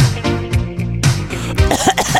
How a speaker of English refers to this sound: She coughed on me. Now I'm feeling so weak.